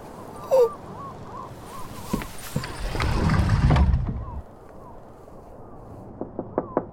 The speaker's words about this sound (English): Knock